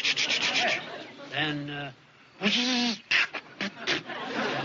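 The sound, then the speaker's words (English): A person vocally imitates a car engine with a clogged fuel line that runs smooth, then sputters and chokes as if not getting gas: raspy, noisy bursts broken by a couple of droning, buzzing hums, then choppy stuttering sputters, with a brief spoken word at the start. “Well, choked up, it seemed to me, like it wasn't getting any gas.”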